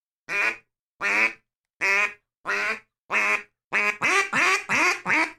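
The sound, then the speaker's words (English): A duck call sounds ten loud, flat quacks imitating a duck: five evenly spaced about a second apart, then five more in a quicker run. No talking. “you get all of that control out of the call like that, but you can also hit that flat quack.”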